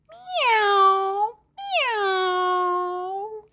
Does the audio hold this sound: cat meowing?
yes